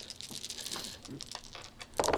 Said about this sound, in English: I like my new toy. It's Twiet. Just roll one of your dice again. They did very good getting you a super quiet toy.